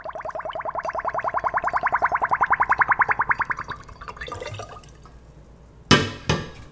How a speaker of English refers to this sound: Right now he's sanitizing the bottles. He pours a cleaning solution into each one through a funnel, and as the liquid goes in, air escapes, creating this little bubbly crescendo.